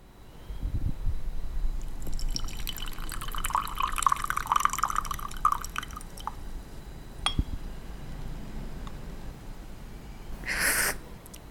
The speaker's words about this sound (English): Xiaofei poured in more hot water into the gaiwan and let it steep for the second round. Then she poured it out again